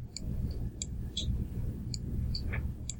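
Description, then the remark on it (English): Computer mouse clicking heard over a live stream: about six short, crisp clicks at irregular intervals, fairly faint, over a steady low rumble of background noise with no one talking. “I can hear my mouse click on your part of the stream here.”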